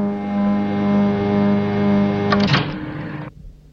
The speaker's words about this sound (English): Meanwhile, the robbers had just blown the bank vault. The vault door swung open.